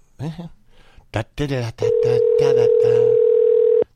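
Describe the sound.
Brief talking, then a single long, steady ringback tone on an outgoing phone call, a flat electronic purr lasting about two seconds, fairly loud, as if heard through the handset.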